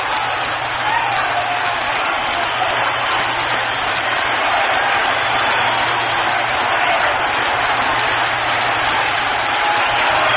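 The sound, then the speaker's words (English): A ballpark crowd at a baseball game yells in a dense, continuous roar as the score is tied 11-11, holding steady and loud for the full ten seconds, with no breaks or single voices standing out. “Boy, did you ever hear more yelling around here?”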